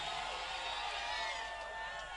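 A crowd of people screaming and shouting together during a church service, a dense, steady wall of high-pitched voices that stays loud and continuous without pause for the whole stretch.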